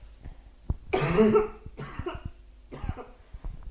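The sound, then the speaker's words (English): A harsh coughing fit: one long rasping cough followed by two shorter, weaker coughs, with no talking. “Oh God, I'm gonna cough again.”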